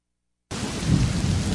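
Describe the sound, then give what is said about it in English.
After a brief silence, a loud thunderstorm cuts in: steady, hissing rain with a deep rumble of thunder rolling underneath, full, with no voices. “This time of year, it seems thunderstorms are an everyday occurrence.”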